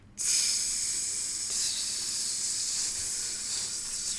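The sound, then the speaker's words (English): A grill is turned on and sizzles to life with a sudden, loud hissing that starts almost immediately and holds steady and bright throughout, with no voices. “I'm going to turn on this grill real quick.”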